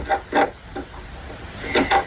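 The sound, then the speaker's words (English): Mice scurrying in a next-door house: a handful of short, scratchy rustles with faint squeaky edges come in irregular bursts over a steady background hiss, with no voices. “That's mice. Mice in someone's next door house. Coming into their house.”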